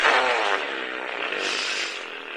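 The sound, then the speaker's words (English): A long, loud, raspy fart sound buzzes steadily for a couple of seconds, with no talking over it; intestinal gas from eating jalapeno jelly and bean burritos. “I cut way back on my drinking, but I've replaced it by eating more jalapeno jelly and bean burrito, so now I'm intestinal gas girl, not beer fart girl.”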